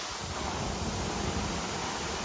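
A steady, loud hiss and sizzle of water poured on 800-degree rocks in a sauna, a continuous rushing wash of steam noise with no break and no voices.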